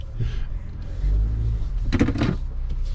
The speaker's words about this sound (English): So today's office is really cool because you and I are in the truck and we are negotiating a boulder field in Montana.